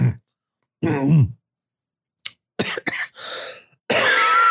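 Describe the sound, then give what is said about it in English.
A person coughing up blood: a series of harsh, wet coughs and throat-clearing hacks in irregular bursts, loud, ending in a rough, raspy fit of coughing. “You're coughing up blood.”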